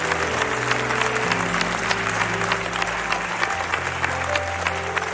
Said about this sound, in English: Somebody give God a praise and a hand clap.